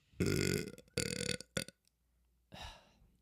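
A series of loud burps after drinking soda: two long rumbling belches, a short sharp one, then after a brief pause a final drawn-out burp, with no talking.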